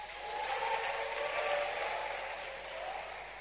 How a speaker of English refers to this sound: Clap your hands for your pastor.